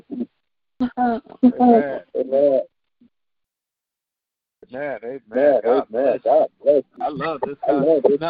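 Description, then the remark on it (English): A muffled, band-limited voice comes through a phone line from a caller on speakerphone, with an echoing, garbled quality, in two bursts separated by a couple seconds of silence, moderately loud and hard to make out. “Turn it down, or can you mute your phone? Because we got a bad echo.”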